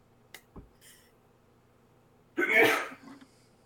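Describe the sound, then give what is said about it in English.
A single loud sneeze bursts out after a few seconds of near silence broken only by faint clicks, with a short breathy tail as it fades. “Gesundheit. Bless you.”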